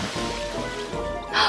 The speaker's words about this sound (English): Let's give this fun fact pot a great big stir. It's brewing and it's bubbling. I wonder what's inside.